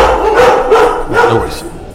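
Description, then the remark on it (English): Dogs barking in a run of short, fairly loud yips and woofs, with a background voice partly mixed in under the barks. “Dogs. I can always edit.”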